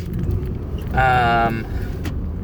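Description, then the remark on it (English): Windshield wipers in the rain over a steady, low car-engine rumble, with one drawn-out, high squeaky stroke of a wiper blade across the glass lasting about half a second. “You're probably going to hear my windshield wipers, you know. I can't avoid that. It's raining.”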